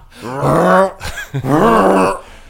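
A voice mimics a dog hacking up a bone: two drawn-out, strained, gurgling groans separated by a brief choking catch, loud.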